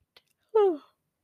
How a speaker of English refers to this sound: Oh, excuse me, guys. Excuse me for that. See, I told you I was going to yawn at some point.